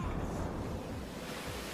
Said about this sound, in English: Because the SFX cue is, oh no, we're being flushed down the underworld toilet. Oh no. That is the actual SFX cue I had on the script.